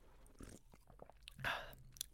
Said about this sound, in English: I mean, it honestly just tastes like the Starburst flavor, if I'm really being honest. Let me have one more sip to confirm that.